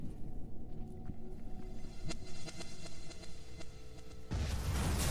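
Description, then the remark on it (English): A low, continuous rumble builds for several seconds before a loud explosion bursts in near the end, filling the sound with heavy booming noise. No one speaks. “There's our explosion.”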